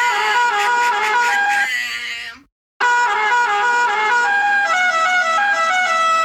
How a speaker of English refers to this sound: Oh, my. I changed the air horn for you. I accidentally changed mine.